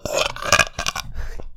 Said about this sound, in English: End the year with a burp. You know what I'm saying? What the hell? Not a bang. With a burp.